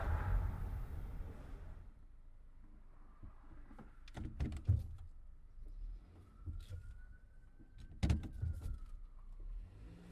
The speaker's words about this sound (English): Truck.